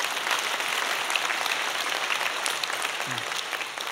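Steady applause from an audience for string players, a dense crackle of many hands clapping continuously at an even, fairly loud level throughout, with no voices standing out.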